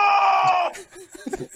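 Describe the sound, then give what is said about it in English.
A man's scream sound effect: a loud, strained scream that holds for well over half a second, then cuts off abruptly into a few brief, scattered fragments of voices. “French guy screaming?”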